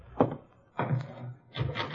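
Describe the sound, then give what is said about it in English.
Three knocks on a door by the little Bullard boy, each a dull, hollow thump with a low resonant ring, unevenly spaced across two seconds, with no voices. “Somebody at the door, Gildy.”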